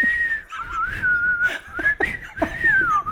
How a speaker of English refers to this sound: I just couldn't whistle, dude. Whistle now. Oh, shit. You still can't whistle.